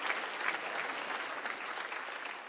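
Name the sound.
audience clapping hands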